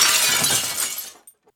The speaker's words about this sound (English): So as you're doing that at the end of your turn, you guys hear this shattering.